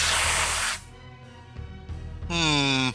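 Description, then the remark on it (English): A loud, hissing burst of water spraying out of a small gun as its trigger is pulled, lasting under a second, then a quiet stretch and a short, wavering tonal whine near the end. “A stream of water sprays out.”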